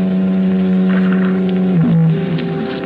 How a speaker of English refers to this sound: While the foghorns called a hoarse warning of murder.